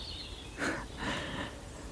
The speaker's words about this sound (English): Noisy crows.